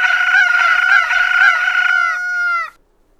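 A rooster crows once, loud, a long strained cock-a-doodle-doo with a wavering middle and a drawn-out falling finish, then silence. No one speaks.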